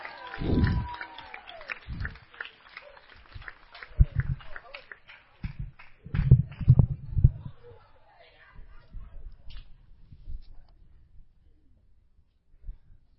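A crowd breaks into a brief round of clapping and cheering, dense at first, then thinning into scattered claps and low murmuring as the noise dies away.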